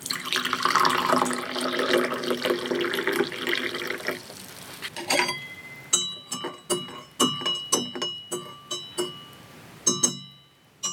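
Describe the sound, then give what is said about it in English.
Liquid pours steadily into a willow-pattern china cup for a few seconds, followed by a series of light ceramic clinks and taps, with no one talking. “Would you be kind enough to pour for me?”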